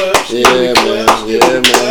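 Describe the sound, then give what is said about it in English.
A steady run of sharp hand claps, about seven in two seconds, evenly spaced and fairly loud, sounding over a sustained tonal bed of music or voice. “So let's give all of them some skibbity. If you got any skibbity claps.”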